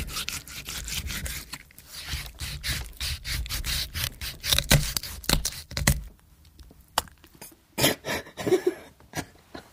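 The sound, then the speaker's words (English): Wet, rasping scrapes and rubs as a raw chicken is flayed with a variety of implements in a recording studio, in irregular rough strokes, dense at first, then sparser with sharp squelchy hits. No one speaks. “Insisting that it would be a technically demanding task, our recordist quickly retreated into the control room, leaving the producer, 8 months pregnant at the time and an attractive shade of green, to flay the poor chook with a variety of implements.”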